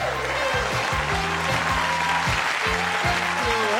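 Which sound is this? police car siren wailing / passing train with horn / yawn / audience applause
audience applause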